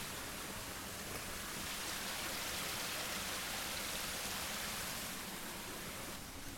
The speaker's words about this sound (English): Oh, you can hear the waterfall. Listen to this.